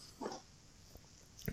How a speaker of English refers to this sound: It's a well, I was going to say raspberry because I kept calling it that, but I think it's actually a red currant framboise. I'm not seeing it written on this label, but it was delicious. I mean, I'm going to take a sip here.